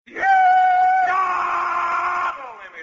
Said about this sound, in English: I'm just doing the rebel yell here to kind of kick the Stan Freberg show off, you know what I mean?